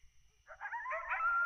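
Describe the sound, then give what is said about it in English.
Coyotes howling in a video game, several wavering high-pitched voices overlapping in a yipping chorus that starts after a short quiet moment and carries on steadily, clear. “Ah, coyotes.”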